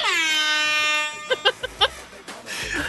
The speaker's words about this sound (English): It's at round three. Air horn.